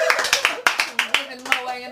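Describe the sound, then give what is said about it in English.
Audience clapping for a special guest in a steady, rhythmic beat, about three claps per second, with sharp, bright hand smacks over a faint murmur of voices. “Clap it up for that!”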